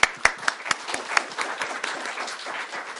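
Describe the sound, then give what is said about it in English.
An audience bursts into applause at the end of a panel discussion, starting with a few sharp, distinct claps that quickly blend into steady, dense clapping from a moderately sized audience. “So, round of applause.”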